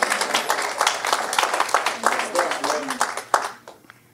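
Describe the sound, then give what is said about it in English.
A crowd at an Easter gathering claps steadily for about four seconds at the speaker's prompt, a dense patter of sharp overlapping hand claps with some voices mixed in, tapering off at the end. “We can clap it up.”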